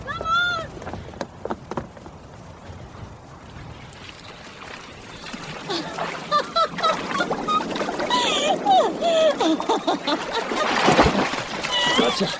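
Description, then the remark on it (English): Sea water splashing at the shore, growing louder toward the end with a burst of splashing near the close, while excited voices call and laugh over it. “I want to run down to the beach. To the sea.”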